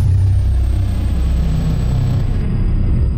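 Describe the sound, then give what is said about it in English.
Princess Aura's private rocket car's engine roars in a loud, steady low rumble for a few seconds, with a thin high whine riding above it and no one speaking. “We have arrived, Earthman. Get in this rocket car.”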